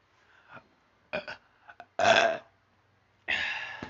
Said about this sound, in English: Belch.